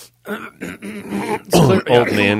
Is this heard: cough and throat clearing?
yes